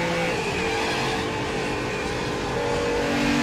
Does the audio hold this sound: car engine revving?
yes